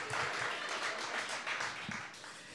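Steady applause from a crowd for a person who has just read through a list fills the whole stretch, a dense, sustained wash of many hands clapping at once with no talking over it.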